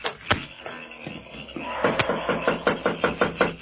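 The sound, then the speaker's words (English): Knocking on the wooden door of Tanura's home: a single rap, a short pause, then a steady run of about eight firm, evenly spaced knocks, fairly loud. “Who is there? The police. Open the door.”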